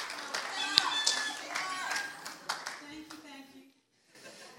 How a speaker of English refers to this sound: So, yeah, give her a clap.